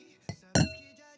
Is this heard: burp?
no